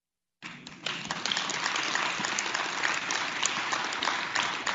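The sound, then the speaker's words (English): A largely religious audience bursts into spontaneous, sustained applause, many hands clapping in a dense, steady roar that swells quickly after a brief quiet start and stays loud throughout. “For those of you listening, there is no one here with an applause sign. I just want you to know that was a spontaneous eruption of probably a largely religious audience.”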